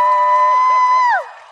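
A single loud, sustained high-pitched cheer from an audience applauding the women guests, held steady for about a second before sliding down in pitch and fading. No clapping stands out beneath it.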